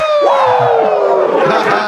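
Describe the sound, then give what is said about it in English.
A long, loud falling Ric Flair-style "wooo" shout rings out over dense crowd-like roaring noise, sliding steadily downward in pitch for nearly two seconds; no distinct claps stand out. “Give me two claps and a Ric Flair.”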